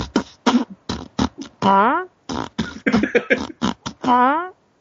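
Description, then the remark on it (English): Someone beatboxes, firing off a quick string of sharp percussive mouth bursts, twice broken by long buzzy, wavering tones that sound like farting. “it sounds like you're farting. And then so I started doing.”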